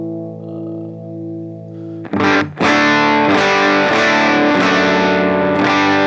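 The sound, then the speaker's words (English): An electric guitar plays through an RSA 23 amp set at the edge of breakup, starting with a sustained clean-ish chord, then hard-picked strums dug in to push the amp into a gritty, overdriven breakup on its own. Loud, with no talking. “So, this is just the amp as I have it set right now. So, kind of edge of breakup. If I really dig in, it'll break up quite a bit on its own.”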